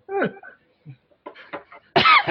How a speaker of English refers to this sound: Cough.